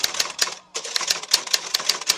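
Rapid typewriter keys clacking in a quick, uneven rhythm, each strike sharp and bright, with a brief pause early on before the typing resumes steadily; fairly loud, no voices.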